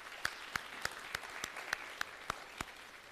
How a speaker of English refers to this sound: why don't we give a round of applause for … here.